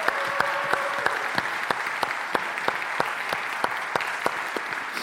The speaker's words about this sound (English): There'll be a chance for some more applause a little bit later as well.